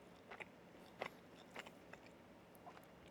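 Moist chewing sounds of a burger being bitten and mashed on the third bite, with a handful of soft crunchy bursts spaced irregularly over a quiet background and no talking.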